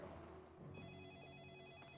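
A telephone rings with a steady, high electronic trill that begins partway through and continues to the end, fairly faint over a low background hum, with no one speaking.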